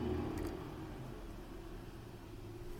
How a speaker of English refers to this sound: So give me a second because there's a truck in the background.